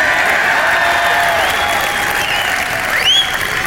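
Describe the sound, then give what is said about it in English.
A crowd claps loudly and steadily throughout, a dense wash of applause with cheering voices mixed in and a sharp rising whistle near the end. “You like it so far?”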